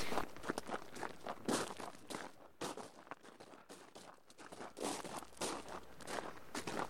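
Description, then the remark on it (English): Steady footsteps walking outdoors in Laxey, following where the trams originally went up to Snaefell, a regular crunching rhythm of roughly two steps per second, moderately loud with faint background noise and no voices. “So perhaps we could walk along and find out where the trams originally went from up to Snaefell.”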